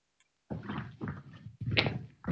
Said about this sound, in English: All right. You going up and knocking on the door. You barged in. You trying to Penny raid. Barging in seems a little inappropriate, but I mean, we could do a like a solid, like paperboy collected money knock.